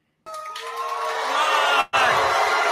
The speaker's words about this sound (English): Listen to that booing. Thank you, St. Jerome. A lot more booing. And thank you, Beshear.